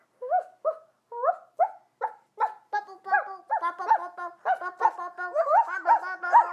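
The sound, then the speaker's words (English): A voice imitates a small dog saying yes with a quick, steady run of about fifteen high-pitched yapping barks, fairly loud, speeding up and running together toward the end. “Okay, the dog said yes.”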